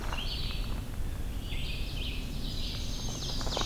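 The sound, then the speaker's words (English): An ovenbird sings a run of repeated bright two-part phrases over a steady low outdoor rumble. “Okay, that was an oven bird, the teacher.”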